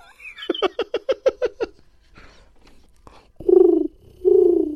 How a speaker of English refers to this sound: Oh, it's a pigeon, yeah. It's a bird flying away.